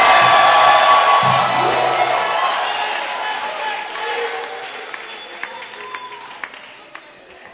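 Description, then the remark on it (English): An audience bursts into loud clapping and shouting, giving the Lord a shout of victory, a dense wash of applause with whoops and raised voices that gradually fades over several seconds, leaving scattered claps and a few calls. “Clap your hands, lift up your voice, and give the Lord a shout of victory.”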